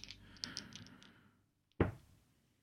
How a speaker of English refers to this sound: I will roll with my newest dice and my oldest. My newest d20 and my oldest d20 together.